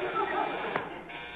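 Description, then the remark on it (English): A servant's call bell, rung by Mrs. Bullock, the mother of the household, buzzes in one continuous, harsh, raspy tone that holds steady and fairly loud for over a second, with a brief click partway through. “She usually rings about this time.”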